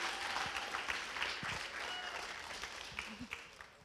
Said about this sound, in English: Deserved a longer applause. It was that good.